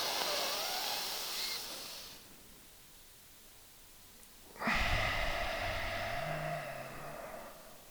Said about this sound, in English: I want you to be in your nose and out of your nose. Breathe, it's yogic breathing, Google it. Breathe deeply into your tummy. So if I take a breath now, well, I'll show you how long it is. So here I go.